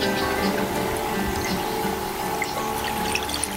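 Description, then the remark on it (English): The Mohawk River flows continuously at a moderate level, a dense, even rush with faint trickling detail and no talking. “Mohawk River flows, Creator's artery, bringing fish for harvest, a waterway for travel.”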